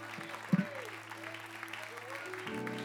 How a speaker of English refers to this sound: And can we redirect that to the one who deserves it? Can we give the Lord a hand clap of praise in this place?